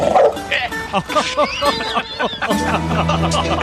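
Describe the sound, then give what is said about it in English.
A dog named Frog gives a quick series of short, sharp barks and yips, fairly loud, mixed with voices, before a steady musical tone takes over. “So Frank takes the dog that he's fucking allergic to.”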